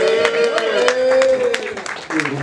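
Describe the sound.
An audience claps in scattered, uneven bursts while a sustained voice-like tone holds steadily over them, the crowd noise staying fairly loud throughout.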